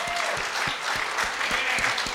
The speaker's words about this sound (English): Whoever thought you'd get so much applause for complaining?